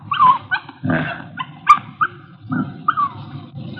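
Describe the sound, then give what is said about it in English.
A female puppy yips and whimpers, a string of short, high-pitched yelps and whines coming in quick, irregular bursts with no talking. “It's a little girl. Just a puppy.”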